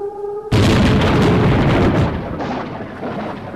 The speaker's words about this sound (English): Whoa, you better take cover, mate. That lightning is right wicked. Lightning struck him dead on those big bolts.